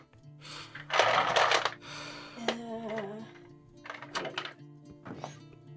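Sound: dice being rolled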